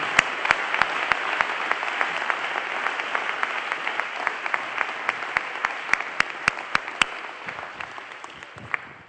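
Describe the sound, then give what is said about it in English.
A crowd claps their hands unto the Lord, clapping steadily, many hands blending into a dense wash of applause with sharper individual claps standing out, sustained throughout and tapering slightly at the end. “Come on, everybody, clap your hands unto the Lord.”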